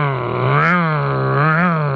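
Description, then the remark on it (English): A voice imitates a sputtering, malfunctioning lawnmower engine with a steady, low groaning drone whose pitch wavers and swells twice over two seconds, loud and continuous with no words. “The last time I turned the lawnmower on, it started to do this.”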